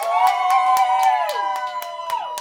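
An audience at a comedy show cheers loudly and steadily to vote for a comedian, with many voices whooping and shouting together at a high pitch while sharp claps punctuate the roar.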